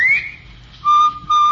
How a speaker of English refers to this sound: Of course, you've heard the cheery whistle of the Bob White.